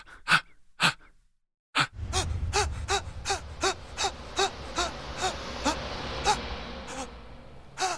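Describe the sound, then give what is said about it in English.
A voice imitates labored, desperate gasping breaths, a rapid series of sharp inhales repeating in a steady rhythm, fairly loud over low background rumble, mimicking Joe Morton's breathing in the Terminator 2 scene before the bomb goes off. “God, that scene when he's just like breathing, clutching onto life before the bomb goes.”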